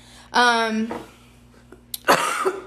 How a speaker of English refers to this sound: My cat. Cough.